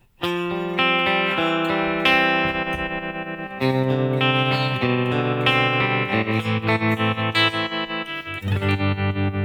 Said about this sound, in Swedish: Vi kan koppla in så att vi får tremolo. Det tror jag, om du provar.